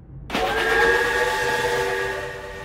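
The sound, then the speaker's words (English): A steam train whistle blows suddenly as the train departs Iowa, holding a loud, steady chord, sustained and gradually easing off, with no one speaking. “When my train left the golden wheat fields and the tall green corn of Iowa for the acres of cotton, nothing but cotton, my heart sank a little.”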